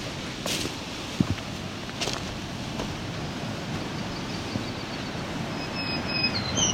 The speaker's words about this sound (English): Got another black-throated green warbler here. I can't tell if he's on the escarpment edge or over the escarpment.